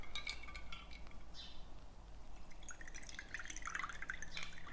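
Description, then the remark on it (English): A cocktail is poured from a shaker into a chilled coupe glass, a steady trickle of liquid with light splashing and a few faint glassy clinks, with no one speaking. “I'm going to pour that into a coupe that I've had chilling.”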